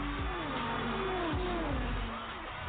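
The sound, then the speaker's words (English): Loud 700-horsepower race car engines roar and rev, their pitch sweeping up and down as cars pass in quick succession at up to 240 miles per hour, over a dense wash of track noise and 300,000 screaming fans. “And join 300,000 fans screaming over 700 horsepower engines.”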